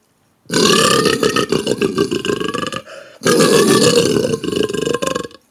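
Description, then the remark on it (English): A person imitates a lion's roar by making a pig-like noise into a cupped pint glass: two long, loud, guttural bursts with a hollow resonance, separated by a brief pause, with no talking. “I don't think anyone can do a better impression of a lion than me.”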